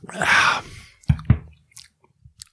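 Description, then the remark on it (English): A wet slurp of someone sipping a Peeps-flavored soda, followed by two soft gulping swallows and a few faint mouth sounds, with no talking. “Let me take another sip here.”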